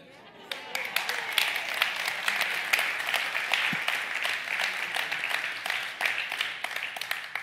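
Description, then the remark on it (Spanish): An audience breaks into steady applause, a dense wash of many hands clapping that starts abruptly and holds at an even, fairly loud level throughout, with a few sharper claps standing out. “Quedaron como con ganas de aplaudir.”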